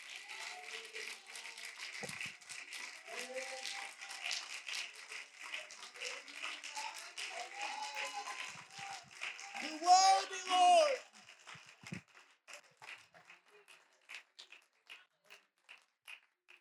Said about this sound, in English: Hey, we just need some Holy Ghost filled believers to stand up and say, he's worthy. He's worthy. He's worthy. Would you clap your hands with me today and just say, he's worthy?